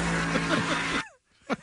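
A Dodge Charger Hellcat engine roars loudly for about a second, its pitch surging and dipping as it revs, then cuts off abruptly, followed by a brief voice.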